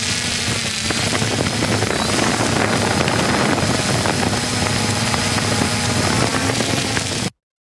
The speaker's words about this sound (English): He took his new drone down to the shore. He's videoing his wonderful wife as she's out there on a raft.